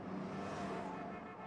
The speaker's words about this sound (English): A car going flat out at 90 miles an hour on the street could catch a train that was going flat out at 50.